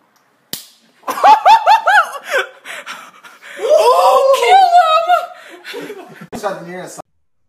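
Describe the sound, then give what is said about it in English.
A single sharp slap of one person slapping another cracks out near the start, then several people erupt in loud whooping, shouting and laughter that carries on to the end. “Take the shot and someone slap someone.”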